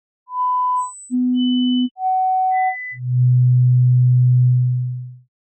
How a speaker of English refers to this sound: If I gradually decrease that tone, at some point, it will fall outside of your hearing range. The level right before it seemed to disappear is known as your threshold. And a hearing test involves many different tones.